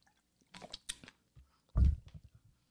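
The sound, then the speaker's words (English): Someone drinks water: a few wet sipping and slurping sounds, then a louder, heavier gulp, followed by faint mouth noises. Nobody speaks. “Let me get some water.”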